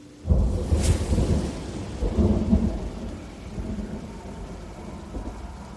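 thunderstorm with rain

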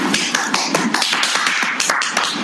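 applause

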